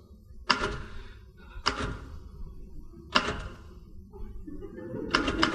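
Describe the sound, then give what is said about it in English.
Typewriter keys struck slowly and heavily by someone wearing gloves while typing out invitations, four separate clunky hits spaced about a second or more apart, each with a brief ringing decay over a low background rumble. “Anyway, what's wrong with typing in gloves?”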